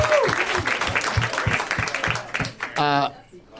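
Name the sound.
audience applause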